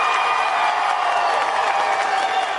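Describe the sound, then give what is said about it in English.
A crowd cheers and applauds loudly and steadily, a dense wash of clapping and shouts that holds at the same level throughout without pausing, reacting to a presidential hopeful's announcement that he will run with Carly Fiorina as his vice presidential nominee. “Yeah, they liked it. There you go. Wild applause.”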